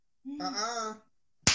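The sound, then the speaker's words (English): A drawn-out vocal sound rises and fades, then after a brief pause a single sharp, loud slap cracks at the very end. “I just slapped you.”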